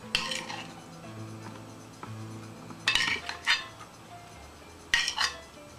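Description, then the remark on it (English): Chicken drumsticks are set one at a time into a crock pot (slow cooker) with a few sharp clinks and scrapes of a utensil against the ceramic, in short bursts separated by quiet pauses, with no talking. “Place one in my crock pot.”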